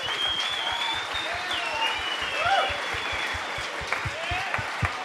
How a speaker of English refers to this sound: And I reckon that is worthy of a big cheer from this audience. Because this woman is an absolute legend.